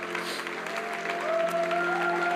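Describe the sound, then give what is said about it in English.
An audience applauding: dense, steady clapping from many hands, fairly loud and sustained, with a faint tonal hum or sustained note running underneath and no clear talking. “So give them a big hand clap.”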